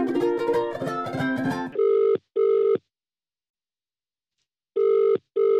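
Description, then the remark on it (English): An old telephone in a telephone room rings as a call is placed to Romesh Ranganathan: a brief busy jumble of tones, then two steady buzzing double rings, a long silent gap, and another double ring, loud and with no voices. “Give him a ring. Give him a bell on the old telephone.”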